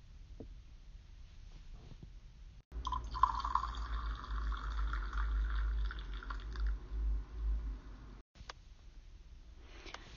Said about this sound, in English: I don't know about you guys, but my mug is getting a little low with the coffee. So if you listeners out there can relate, let's get that hot cup of Joe filled back up in that mug and get back to this amazing memoir.